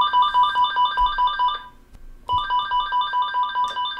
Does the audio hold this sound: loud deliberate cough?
no